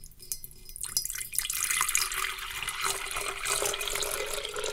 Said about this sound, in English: That's a pitcher being filled. That's a pitcher of water. I brought this pitcher of water in here so that I could get the sound effect, and I made sure that I took a really long time to pour it.